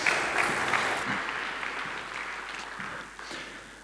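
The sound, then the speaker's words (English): An audience gives Dave a round of applause, clapping in a dense, steady round that starts loud and gradually tapers off over a few seconds, with no voices over it. “Give Dave a round of applause.”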